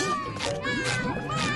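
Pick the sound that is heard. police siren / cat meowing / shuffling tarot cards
cat meowing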